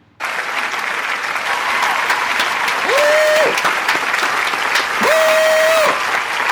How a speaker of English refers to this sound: Where's the clapping thing? Put the clapping thing on. That's it.